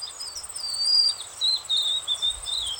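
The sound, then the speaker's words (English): A young, first-year white-throated sparrow, learning its song in winter, whistles a thin, wavering song: a few sustained high notes that wobble and slide slightly off pitch, with a faint steady insect hum in the background. “As winter deepens, the first-year birds begin to get the syllables of their songs down, but they might sound shaky and off-key.”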